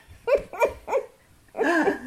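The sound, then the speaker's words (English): A dog in a home studio set up in a spare room barks three times in quick succession, then lets out a longer, drawn-out bark. It is clear, with no talking over it. “I'm just going to throw the dog out because we are very, for those who are new around here, we podcast from my home studio, which is spare room, and the dogs and the kids interrupt us quite a bit.”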